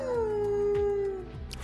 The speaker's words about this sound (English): The Howl Emote for 200.